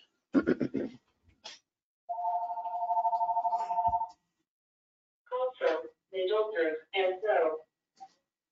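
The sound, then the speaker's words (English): A phone rings once with a steady electronic trill lasting about two seconds, clear, with a person talking briefly before it and again after. “And remember, Venus is, oh dear, hang on, let me get the phone.”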